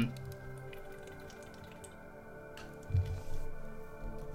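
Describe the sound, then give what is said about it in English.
Someone quietly drinks water after working out, with soft liquid sips and a slightly louder gulp near the end, and no talking. “I'm just drinking some water because I just got done working out.”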